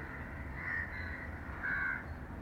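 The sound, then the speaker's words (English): A crow caws twice, two harsh, drawn-out calls about a second apart, over a low, steady background rumble. “Have you ever listened to sound, the crow?”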